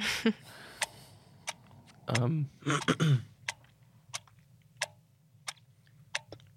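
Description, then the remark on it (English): A clock ticks steadily with sharp, evenly spaced clicks about every two-thirds of a second. A brief voice murmurs partway through, and the ticks continue alone. “I think we need the clock for this one.”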